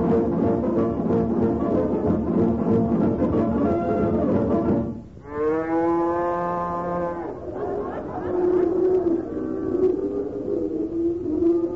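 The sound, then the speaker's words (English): Cows mooing in a dairy barn: a thick, steady stretch of lowing gives way to one long, drawn-out moo with rich harmonics, followed by softer, lower moos rising and falling. “Wonderful looking bunch of cows, isn't it, Molly?”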